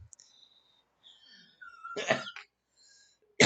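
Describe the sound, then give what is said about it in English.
A couple of harsh coughs burst out, the first rough and drawn-out, then a short pause before another sharp cough starts abruptly at the end. “Oh, man, I'm sure coughs a lot right now.”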